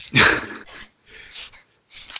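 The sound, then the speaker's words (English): Six small dogs yip in three quick bursts, the first loudest, followed by two shorter, softer rounds of high-pitched barking with brief pauses between. “I also have 6 dogs now.”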